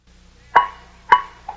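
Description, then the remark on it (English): Two sharp, hollow knocks with a brief ceramic ring, about half a second apart, then a softer third tap: an earthenware jug striking a wall, heard alone without talk. “With my earthenware jug, I knocked against the wall where the sound came.”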